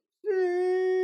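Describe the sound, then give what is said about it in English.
A person imitates the meow of their cat, Stella, as she first meowed at them: one sustained, steady-pitched vocal tone rich in harmonics, starting abruptly after a brief silence and holding at even loudness until it cuts off. “I literally named my cat Stella because the first time she meowed at me, she goes...”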